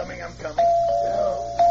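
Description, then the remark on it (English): A buzzing doorbell rings with a long, steady, fairly loud tone, then cuts off and starts buzzing again a moment later, following brief indistinct voice sounds, in a scene of the CBS Radio show The Couple Next Door. “honest, I've been ringing the doorbell and knocking for 10 minutes.”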